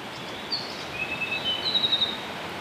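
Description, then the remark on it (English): Thin, high-pitched calls of a pair of mohua (yellowhead) responding at monitoring site CH7 at Makarora: a few short whistled notes and a brief trill, faint against a steady rushing background of wind or water. “Monitoring the Makarora mohua”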